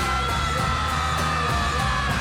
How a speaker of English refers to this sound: And then he starts singing maniacally. And then he does this huge scream.